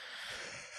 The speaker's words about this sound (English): I'm joined by the very tired … over there yawning up a storm